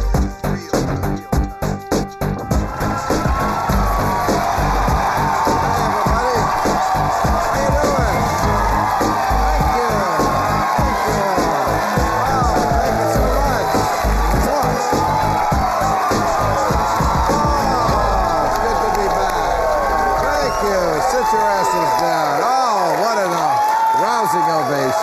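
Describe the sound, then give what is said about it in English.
The studio audience of the HBO late-night series Real Time with Bill Maher cheers and applauds loudly and continuously, a dense wash of clapping with whoops and shouts rising over it, sustained at steady volume throughout. “What a crowd.”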